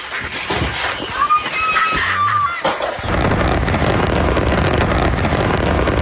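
Dense, rapid crackling of many small commercial-grade fireworks bursting over one another after a big explosion at a house storing a large supply of them, loud and continuous, kicking in halfway through after a quieter, murkier opening.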